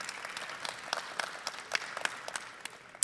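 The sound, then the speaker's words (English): An audience at a Meet the Artist conversation held before a performance of the ballet Giselle applauds. A dense patter of many hands claps steadily throughout, moderately loud and continuous, with no voices over it. “Yeah, we can give a round of applause.”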